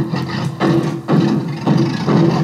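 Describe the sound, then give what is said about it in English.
A rough, sputtering old car engine rumble, chugging in uneven loud bursts about every half second with a low buzzing tone, with no clear separate backfire pops and no talking. “It's an old car sputtering and backfiring.”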